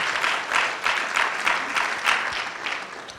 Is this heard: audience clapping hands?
yes